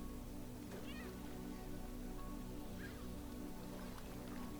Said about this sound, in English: And the gentle sound of the surf somewhere nearby.